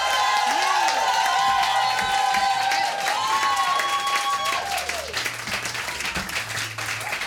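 A crowd applauds and cheers loudly for the final act of the night, with sustained clapping, whoops and high-pitched shouts rising over the noise before the ovation gradually thins out.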